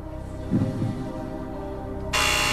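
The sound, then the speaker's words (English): A harsh, loud game show buzzer blares abruptly near the end and holds steady, following a stretch of low, murky tonal hum with a brief muffled thump partway through. It sounds during a show's quiz, where contestants have three seconds to buzz in. “3 seconds to buzz in.”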